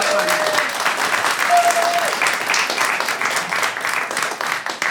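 Steady applause from a room full of people, a dense, continuous patter of clapping that holds fairly loud for the whole stretch, with a couple of faint whistles near the start.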